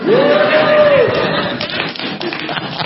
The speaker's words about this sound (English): Don't clap for that.